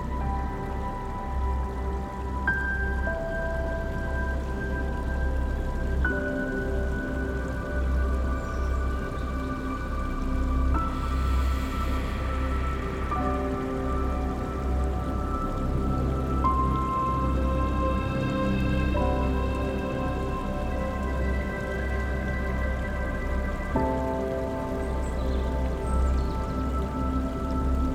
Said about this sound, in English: And while the cool breeze softly blows, imagine a small mountain stream filled with rocks and cool water running alongside your bed.